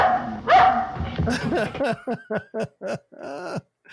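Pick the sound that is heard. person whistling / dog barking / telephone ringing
dog barking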